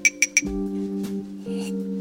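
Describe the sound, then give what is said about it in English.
A glass holding a bright green smoothie is set down with three quick, bright clinks in an even rhythm, followed by a steady low humming tone that lingers to the end. No one speaks. “Imagine I just handed you a green smoothie in a glass, like this one right here.”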